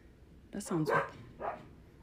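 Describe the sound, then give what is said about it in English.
A few short, muffled dog barks from somewhere outside, a quick pair followed by one more after a brief pause, fairly quiet against a low background hum. “can you let the dogs in? But through your door, not my door?”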